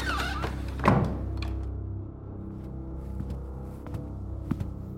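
A door in a foyer is opened with a single dull thunk near the start, followed by low, steady rumble and a few faint clicks and taps. No one speaks.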